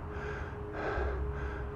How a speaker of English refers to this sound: Oh, there's the horse.